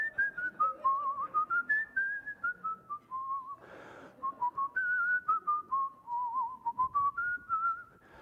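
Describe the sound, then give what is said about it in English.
A person whistles a meandering tune, a clear, steady tone gliding up and down in short phrases with brief breath pauses, fairly loud. “I'm thinking there's a little whistling going on here.”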